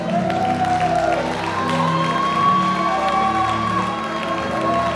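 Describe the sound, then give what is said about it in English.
A large crowd cheers and shouts continuously in praise of God during a sermon, a loud, sustained roar of voices with whoops layered over steady held musical tones, likely an organ or keyboard, throughout. “That's cute if you cheer for the Bears.”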